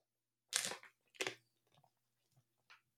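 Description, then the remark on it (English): Someone takes a sip of water: two sharp, crinkly bursts like a plastic bottle being squeezed, then a few faint gulping and swallowing sounds. No talking. “So let me take a sip of water because I have been talking a lot.”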